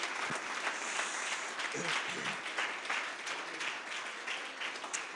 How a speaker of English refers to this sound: Let's give him a hand clap of praise in the building.